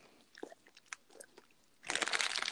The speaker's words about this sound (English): Really, let me eat my popcorn piece. I'm just gonna hurry and eat this popcorn because she's attacking me.